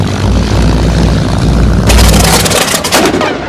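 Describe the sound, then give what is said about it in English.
A kamikaze pilot's propeller plane engine roars steadily and loudly as the throttle is eased forward while taxiing on a runway, then breaks into harsh, uneven sputtering bursts before cutting out. No voices. “With mind, body, and soul committed to your mission, you ease forward on the throttle, the engine roaring to life.”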